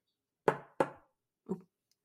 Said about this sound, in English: I was knocking a little pen on my table, and I didn't think it would pick up. That was a heavy-sounding pen. Wait, can I see the pen? I love pens. This one. Oh. It's a highlighter, yeah. Oh my God. It had some weight to it.